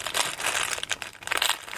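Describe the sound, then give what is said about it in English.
Crinkling of the plastic wrapper of an individually wrapped Cadbury Crunchy chocolate bar, a steady run of dense, crackly rustles with brief sharper crackles, fairly loud and heard on its own with no talking. “These are individually wrapped for your protection.”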